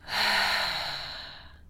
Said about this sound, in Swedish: Men om du sitter ner kan du sluta dina ögon och ta ett djupt andetag in genom näsan. Och släpper ut luften genom munnen.